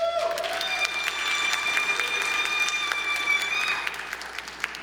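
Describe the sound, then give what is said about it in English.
A church audience at a worship service bursts into cheering and steady applause at the news that worship services will have no capacity limit from June 6th. Dense clapping and whoops last several seconds, then taper slightly toward the end. A high whistle-like tone rings through the crowd noise. “I feel like cheering is like spiking the football on them, and so I'm a little sensitive about it, but it's cool if you cheer.”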